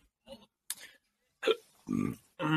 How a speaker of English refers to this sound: Fuck, I can't stop either hiccuping, burping, or fucking just like sucking a ton of air.